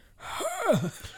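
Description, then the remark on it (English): A single startled gasp, a sudden breathy intake that rises and then drops into a strained, wavering vocal tone, moderately loud and heard on its own without speech. “A startled gasp escaped from deep in her throat.”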